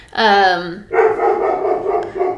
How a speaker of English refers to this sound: Sorry, our dogs.